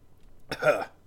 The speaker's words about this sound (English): It's COVID the only super. The only difference is it gives you hiccups for some reason.